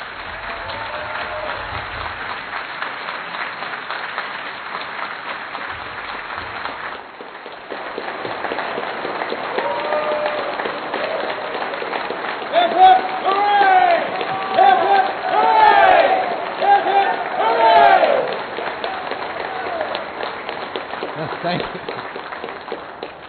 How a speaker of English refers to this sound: Applause already, and I haven't even told the gag.